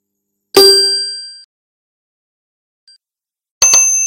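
A metal kadhai (wok) clangs loudly on a stove twice, about three seconds apart, each strike ringing out briefly, with a faint small tap in between and no voices, as it is set up for 2 liters of milk to make gajrela.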